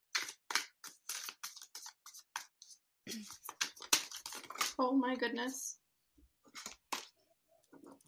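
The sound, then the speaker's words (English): Crisp papery flicks and slaps of tarot cards being reshuffled, with several cards falling out, in quick irregular bursts, with a voice briefly exclaiming partway through. “Every time I'm shuffling, like eight cards are falling out.”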